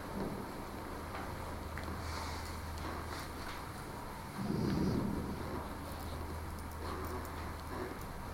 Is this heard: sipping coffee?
no